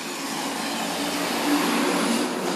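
A truck rolls by with a steady, broad engine roar and road hiss that swells slightly midway, with no one talking over it.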